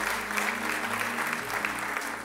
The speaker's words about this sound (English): Some of you guys, oh, you clap. Let's clap unto God.